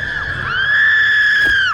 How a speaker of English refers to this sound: screamed.